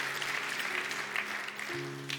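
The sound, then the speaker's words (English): A church audience claps steadily for the church family in Philadelphia, a dense wash of crowd applause that holds throughout, with sustained musical tones humming softly underneath. “Come on, let's clap for everyone in Philly.”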